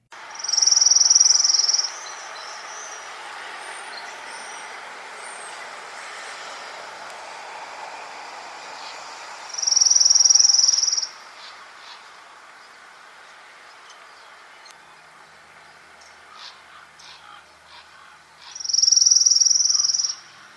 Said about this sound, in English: I will go ahead and play a Orange-crowned warbler call where the warbler did not change pitch and did not change the speed of its trill.